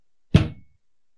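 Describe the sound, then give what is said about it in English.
A single solid knock on a door, one dull thud with a short resonant decay, heard alone with silence on either side. “Two knocks for yes, one knock for no.”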